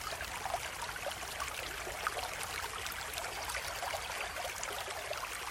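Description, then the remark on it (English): A clear forest stream runs steadily over smooth rocks with a continuous babbling rush and small splashy trickles, even and unbroken throughout, moderately quiet, with no voices. “It's the sound of water running.”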